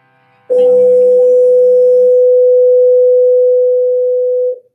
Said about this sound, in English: So sorry, that was our bell. God, we keep getting interruptions, I'm so sorry.